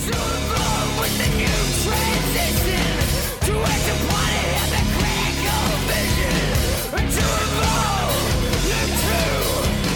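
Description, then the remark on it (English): Loud, dense hard rock plays continuously, with distorted guitars, pounding drums and harsh screamed vocals filling the mix, broken only by two brief dips in the wall of sound. “You want balls-to-the-wall hard rock, complete with screamed vocals?”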